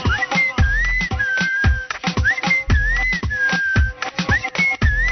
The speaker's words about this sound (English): I love that whistle part.